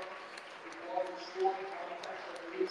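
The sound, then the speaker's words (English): Crowd applause at a football match as player Paul Caddis thanks the crowd: a steady wash of clapping and cheering mixed with murmuring voices, swelling briefly a few times before settling back to an even roar. “And getting a great round of applause too.”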